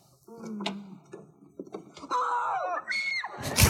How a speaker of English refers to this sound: Just her choosing to scream. Like she was stabbed in the heart.